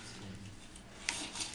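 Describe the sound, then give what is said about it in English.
A paper envelope is pulled from a drawer: soft, steady scraping and rustling, then a sharp papery snap followed by a few brief crinkling bursts. Quiet overall, with no voices. “So, drawers, pulls out a bit of paper.”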